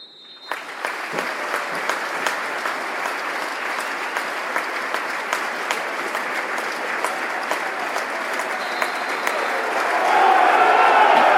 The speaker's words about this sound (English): we would now like everyone in the stadium to pay tribute this evening to one of the game's true gentlemen by asking everyone to join together in a minute's applause, starting and ending on the referee's whistle.